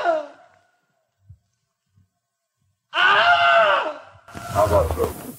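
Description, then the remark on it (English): A brief pained vocal sound, a pause, then two loud, drawn-out screams of a man in agony, the second backed by rough, thrashing noise, a sound effect of a man being bitten and eaten by a crocodile or alligator. “I knew of where it came from, you know, man getting eaten by a crocodile”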